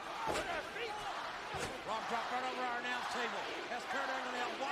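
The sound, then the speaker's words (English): A wrestling ring squeaks repeatedly under shifting bodies, with a couple of heavy thuds as weight hits the mat, over a steady murmur of crowd noise. “I hate that I can hear the ring squeaking every single time it squeaks.”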